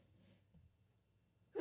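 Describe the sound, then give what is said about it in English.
A single sudden, loud sneeze bursts out right at the end after a stretch of near-quiet, abruptly cut short. “Bless you.”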